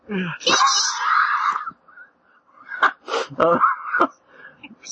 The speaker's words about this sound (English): No, the cat was meowing in the kitchen, and I was calling to her. I thought I was muted.